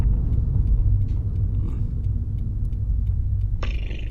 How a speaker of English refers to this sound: These are car sounds.